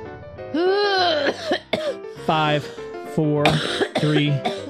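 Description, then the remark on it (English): Several loud bursts of harsh coughing and throat clearing, strained and voiced, coming in quick fits with brief gasps between them over a few seconds. “The coughing is not good.”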